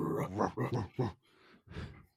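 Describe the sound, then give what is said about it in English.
A man imitates a dog's growl with his voice, making several rough, throaty bursts, followed by a breathy rasp and one more guttural growl. “He'd be growling, dude.”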